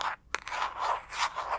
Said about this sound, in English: Can you guess what object I'm tapping and scratching on? Right, my phone.